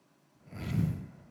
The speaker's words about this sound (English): I'm sorry for breathing all heavy in the mic, but it's just mind-blowing to me.